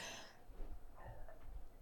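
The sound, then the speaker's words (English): A single sneeze bursts out sharply at the start, followed by low, rough breathy sounds as the person recovers. No one speaks. “Excuse me. Bless you.”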